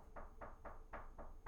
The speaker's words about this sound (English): Someone is knocking on the door. Yeah. We're going to... I don't know. We're going to pause the show, I guess, for a second. Because someone's knocking on our door.